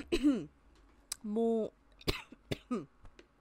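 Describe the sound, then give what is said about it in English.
A few sharp coughs burst out in quick succession after a sneeze, interrupted by short bits of a person talking between them. “I don't know why every time I sneeze it makes me cough afterwards.”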